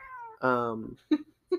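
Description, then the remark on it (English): A very tiny cat gives a drawn-out, high meow that slides downward in pitch, followed by a couple of brief, softer mews, fairly loud. “Very tiny muse coming from a very tiny cat.”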